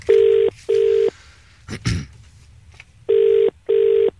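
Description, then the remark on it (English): An outgoing phone call's ringing tone: two double-burst rings of a steady, buzzy tone, separated by a pause with a brief thump in between, clear, with no talking. “The thing is, he's ringing and he knows it's ringing.”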